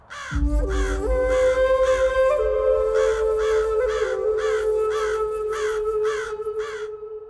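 A raven caws repeatedly in a steady series of about ten harsh, evenly spaced, loud calls over a sustained low droning tone that lasts throughout.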